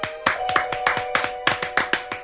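A run of about nine sharp hand claps at a steady, brisk rhythm, each crisp and even in loudness, with a faint constant hum underneath and no talking.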